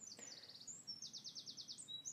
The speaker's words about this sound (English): So I've now walked a bit further on, and there is a robin sat right in front of me on a twig.